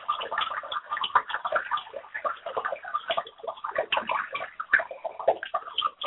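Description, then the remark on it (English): Running water gurgles and splashes steadily in a bathtub, heard over a phone, a continuous busy burbling with small irregular sloshes, moderately loud, with no voices. “Actually, the gurgling sounds of the water are very interesting over the phone.”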